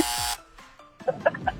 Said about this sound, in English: Oh, what? What is it? I'm playing the buzzer for you there.